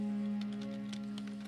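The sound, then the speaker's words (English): Soft, irregular clicks of a woman typing on a computer keyboard in a ballroom, several quick keystrokes over a steady low electrical hum, with no voices. “Colleen O'Neill was hard at work typing away at her computer in the ballroom”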